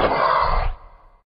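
A short, loud roar sound effect in an introduction bursts out, rough and growling, then quickly fades into a brief trailing rumble. No one speaks over it.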